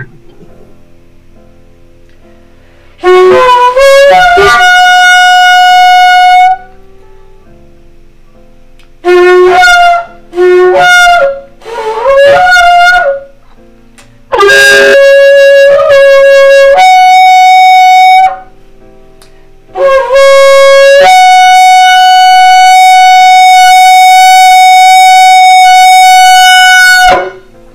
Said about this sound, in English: Again, we're going to blow the shofar, the feast of trumpets.